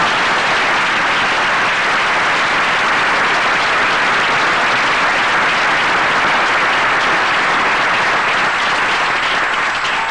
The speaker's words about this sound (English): So let's give him a great round of applause for his efforts.